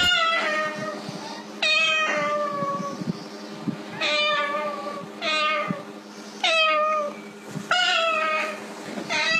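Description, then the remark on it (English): A cockatoo mimics a cat's meow, repeating drawn-out, whiny meows roughly every two seconds, loud over a low steady background hum. “And our last viral video involves a cockatoo sounding like a cat.”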